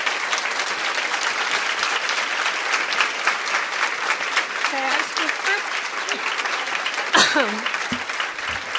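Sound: audience applause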